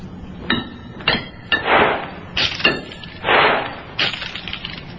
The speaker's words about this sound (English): Dr. Humer, hurl the coins around the chamber floor, the last few far over to the other side.